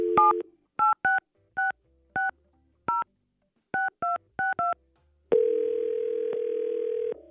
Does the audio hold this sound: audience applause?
no